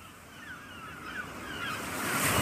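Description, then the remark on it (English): A few thin, wavering seagull cries drift over a steady wash of ocean surf and wind, the surf swelling slightly louder toward the end. No one speaks. “and after the seagulls, we'll be back with that little time capsule here.”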